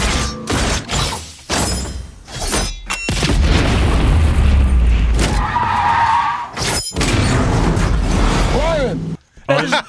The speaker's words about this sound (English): Well, our first and only film is Furious 7, but don't worry. Furious. No dialogue will get in the way of all the explosions.